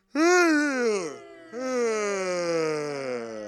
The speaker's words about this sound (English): I've had so much no sleep this week, so in honour of that, we're going to do a nice big yawn.